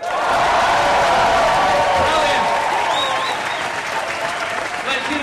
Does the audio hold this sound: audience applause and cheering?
yes